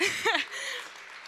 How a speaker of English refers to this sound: You can give her a clap for that. I think she deserves it.